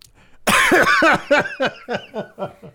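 A loud coughing fit in the middle of a show: one harsh, forceful cough followed by a rapid string of about eight shorter, raspy coughs that gradually weaken. No one speaks.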